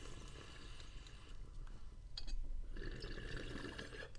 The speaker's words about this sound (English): Nothing like the sound of a nice bubbling bong.